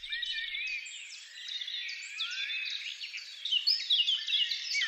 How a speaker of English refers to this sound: It's early morning, and the birds are starting to sing in the hedgerows and fields. You can distinguish a blackbird singing loudly to wake up the world, and a church bell tolling.